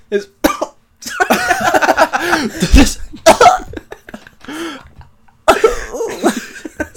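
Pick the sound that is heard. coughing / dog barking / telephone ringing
coughing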